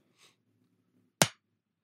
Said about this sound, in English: I'll clap my hands and then I'll just dive into my next thing.